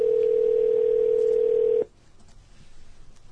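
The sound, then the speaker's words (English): A steady, loud telephone dial tone, heard while trying to call a phone number, holds one pitch for almost two seconds, then cuts off abruptly, leaving faint low background noise. “I'm going to try and call the other number for you,”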